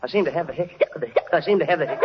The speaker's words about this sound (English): I seem to have the hiccup.